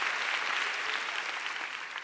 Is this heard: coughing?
no